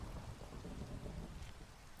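Steady, soft rainfall hisses evenly throughout, underlaid by a low continuous rumble like thunder, with a brief sharp drip or tap just before the end. No voices.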